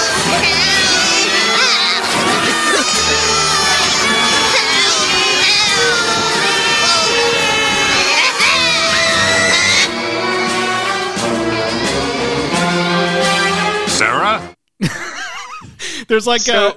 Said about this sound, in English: There's this crazy scream from Sarah, and like as it's like fully voiced, it cuts to like Sarah's dad just like fucking around eating grass, but the screaming that scream continues, but now it is immediately like in a split second farther away